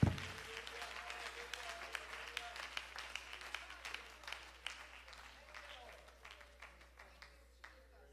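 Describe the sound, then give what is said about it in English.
An audience at the Church of the Living God claps hands in worship of God, a steady, dense patter of many hands that fades slightly toward the end, with faint voices underneath. “Clap your hands and worship God.”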